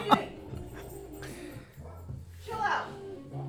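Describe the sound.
Dogs yip and whimper in short, high bursts while playing, one at the start and another cluster near the end, over a steady low murmur of voices; one dog is in a pool.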